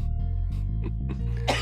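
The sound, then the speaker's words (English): A harsh cough ending in a sharp burst, with a few short throaty hacks before it over a steady low hum. “And here's the cough.”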